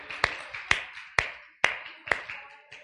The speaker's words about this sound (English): All right, let's give the Lord a hand clap of praise while you make your way back to your seats.